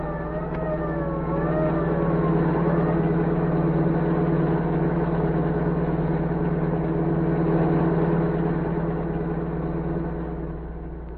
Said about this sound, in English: As the general's car sped toward the border, orders cracked out.